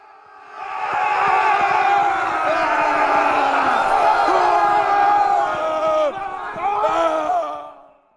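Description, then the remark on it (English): A loud, dense crowd of voices yells and roars together like battle war cries, with scattered sharp clanks beneath that suggest clashing blades, swelling steadily before fading away. “The wizard's eyes fell on the battlefield, which was now a roiling sea of clashing blades and angry war cries.”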